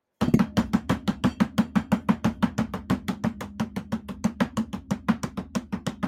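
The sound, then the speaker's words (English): A Bongo Cat impression: rapid, steady hand tapping on a hard surface, like improvised bongo drumming, around thirty sharp percussive hits in an even, fast rhythm with no talking. “Can you do your best Bongo Cat impression right now?”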